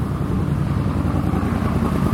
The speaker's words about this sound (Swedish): Kommer en häftig motorcykel. På vilket sätt häftig? Han såg ju cool ut på motorcykeln också.